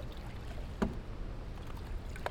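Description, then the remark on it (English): Footsteps of someone in sandals slosh through shallow water: two distinct splashy steps over a steady watery rushing background, with no talking. “Oh, there is no parked car here, so we have to walk in some of this water.”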